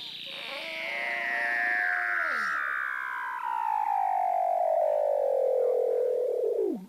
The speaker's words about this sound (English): you have Weddell seals swimming around in Antarctica, and you can hear them through the ice. And they have these sort of incredible sort of Star Wars robot / spaceship calls that are amazing. Excuse me, you need to hear these Weddell seals right now.